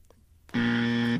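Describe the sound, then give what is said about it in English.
A single harsh, buzzy tone starts abruptly after a brief quiet moment and holds steady for about two-thirds of a second before cutting off, a game show buzzer sounded to reject a wrong guess of online shopping. “buzzed you.”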